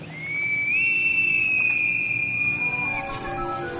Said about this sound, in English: Then we hear a whistle like a bosun's pipe.